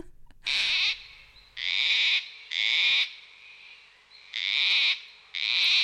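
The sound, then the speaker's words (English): Gang-gang cockatoo squeaky-gate calls: five loud, harsh, creaking squawks, each about half a second long, repeated at slightly uneven intervals with no talking. “I love the squeaky gate sound of the Gangang cockatoo,”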